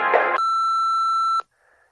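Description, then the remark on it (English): An answering machine gives a single loud, steady electronic beep that holds one pitch for about a second, preceded by a short burst of noisy clatter and followed by faint hiss. “So please stop explaining and wait until the beep.”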